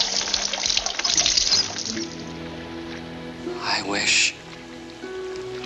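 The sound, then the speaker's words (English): Water overflows from a running tap, pouring and splashing steadily, loudest at first, with a brief gushing surge near the end over faint background tones. “the water! Oh, what a mess!”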